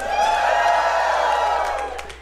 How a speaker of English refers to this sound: That always gets a big round of applause when you say, like, if Ticketmaster's a shithead, that always works.